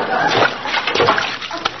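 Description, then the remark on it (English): Diced chunks of potato, cut into cubes, splash noisily into a pot of water, a continuous burst of sloshing and splattering that lasts about two seconds with a few sharper plops near the end. “Now stand back. I don't want to splash anybody.”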